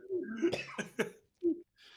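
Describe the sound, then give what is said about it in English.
Someone coughs hard in a rapid burst of three or four harsh, choking hacks, then a shorter cough and a raspy breath, after a sip of water went down the wrong pipe. “Wrong pipe. Yep. One sip of water will kill you, people.”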